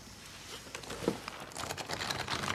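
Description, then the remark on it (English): Dry paper of an old book crinkles and rustles, a soft crackling handled in short irregular bursts that grow busier toward the end, with no voices. “Even the paper sounds kosher.”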